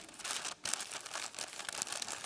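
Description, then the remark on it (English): Paper bag crinkling in a steady, dense rustle of crisp crackles, briefly pausing once before resuming, fairly soft throughout with no voices. “You see, your life in a lot of ways is kind of like this paper bag.”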